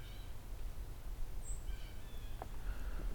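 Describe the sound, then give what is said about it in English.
Several faint, high thin peeps from white-throated sparrows come at scattered moments over a steady low outdoor rumble, with no one talking. “Something peeping here. I think that's white-throated sparrows.”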